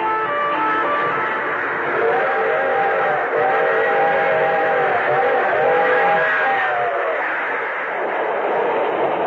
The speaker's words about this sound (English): Picture this. A string of freight cars crossing a dusty stretch of lonely farmland.